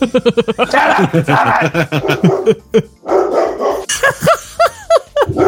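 A dog barks loudly, opening with a quick string of sharp barks, then breaking into scattered high yips and barks over a dense, noisy background.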